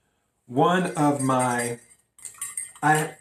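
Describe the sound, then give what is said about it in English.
A spoon stirs ginger water in a glass, giving light, high clinks and tings in a quick irregular run, while a voice makes drawn-out vocal sounds over and between them. “I have ginger water here that I'm stirring.”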